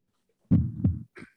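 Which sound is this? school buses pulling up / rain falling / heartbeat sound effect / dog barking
heartbeat sound effect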